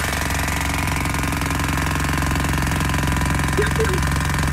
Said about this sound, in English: Sounds like a jackhammer. It is.